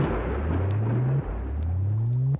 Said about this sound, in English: Yeah, it sounds like the thunder's gathering, so yeah, let's do it.